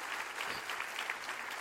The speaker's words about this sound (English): Clap your hands because you're in the house of God right now. That's beautiful.